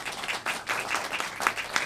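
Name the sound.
round of applause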